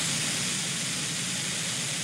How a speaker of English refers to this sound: What about gray noise?